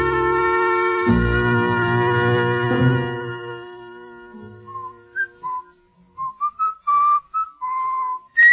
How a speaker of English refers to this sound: would you mind stopping that eternal whistling of yours? Things are bad enough in this jail without listening to that.